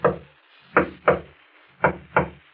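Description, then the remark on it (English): Quiet knocking on a shop's wooden front door: a single rap, then two measured pairs of soft, hollow knocks, each fading quickly. Unhurried, with no voices. “There's a discreet knock on the door at the front of the shop.”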